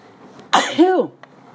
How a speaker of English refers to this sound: I got a sneeze coming.